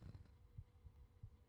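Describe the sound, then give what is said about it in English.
A quick, muffled human heartbeat, racing, thumps low over a soft background hum, its beats arriving in a fast, steady rhythm with no voices present. “That's my heart racing right now.”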